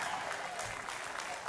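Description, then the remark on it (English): Steady applause from a sizable church audience clapping amen during a sermon, many hands clapping at once in a dense, continuous wash that holds at an even level throughout without rising or fading. “Somebody ought to clap amen.”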